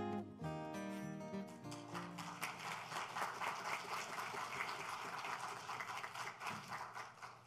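A church audience at a Christmas-season service breaks into steady applause for the missions committee's work, many hands clapping in a dense, crackling wash that holds for several seconds, while a few sustained musical tones fade out at the start.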